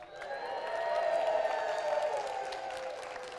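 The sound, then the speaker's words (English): A crowd cheers and applauds, a steady wash of clapping under sustained whooping voices that swells in the first second or so and holds loud before easing slightly toward the end. “The crowd stood and they cheered.”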